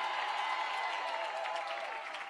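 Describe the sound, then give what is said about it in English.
A church audience at Oceans Church, gathered in tents outdoors, applauds loudly and steadily for Jesus, many hands clapping together in a dense, continuous wash with a few cheers mixed in, fading slightly toward the end. “Can we give Jesus a big hand clap?”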